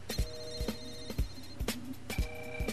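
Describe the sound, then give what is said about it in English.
A phone ringback tone on an outgoing call, steady tonal bursts repeating with sharp clicky transients in a regular rhythm, moderately loud and heard alone without any talking. “It's ringing.”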